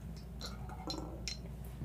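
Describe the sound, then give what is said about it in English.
A few light glassy clinks, like shot glasses (a Dave and Buster's shot glass and a Mark Martin shot glass) knocking together, come in quick irregular taps over a low steady background hum. Nobody speaks, and the clinks stay fairly quiet. “Do you want the Dave and Buster shot glass?”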